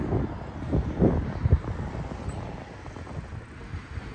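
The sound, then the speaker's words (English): Gusty wind rushes and buffets on a street, with a steady low rumble and a few stronger bursts early on before settling into a softer, constant roar. No one speaks. “All right, I think I'm on a windy street.”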